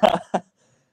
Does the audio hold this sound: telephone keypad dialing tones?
no